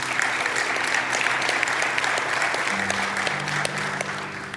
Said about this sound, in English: Now, yeah, we can clap for this.